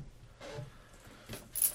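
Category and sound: household object, dice being rolled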